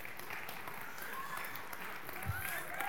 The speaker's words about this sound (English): Well, can we give the band a round of applause?